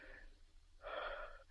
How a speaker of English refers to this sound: See, his labored breathing subsides.